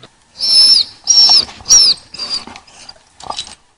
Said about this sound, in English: So I just stood here at the moment, and the dog has started whining. I don't know why. I mean, nothing's changed, has it?